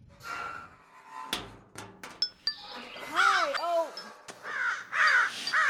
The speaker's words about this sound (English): The outside crows have been trying to infiltrate my bunker all week. They keep dismantling my security.